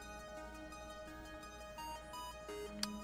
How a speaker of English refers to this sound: As I'm walking back, you hear the affirmative chime.